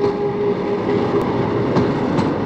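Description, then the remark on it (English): A locomotive train rumbles past with a steady, dense roar, a faint tonal hum running through it and a few sharp metallic clicks from the wheels on the rails. No one speaks. “Oh no, there is another locomotive.”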